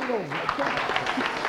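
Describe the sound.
An audience at a Christian holiday gathering applauds a woman with a dense patter of clapping, steady and moderately loud, while voices call out over it.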